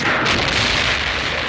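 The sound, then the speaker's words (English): A loud movie-style explosion: a dense, sustained blast of roaring, crackling noise that fills the whole short stretch without letting up, with no voices over it. “Bam. Good explosion. Boom.”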